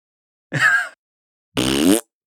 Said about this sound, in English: And then he, you know, rips a big fart. And it's so funny.